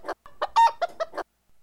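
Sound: chicken clucking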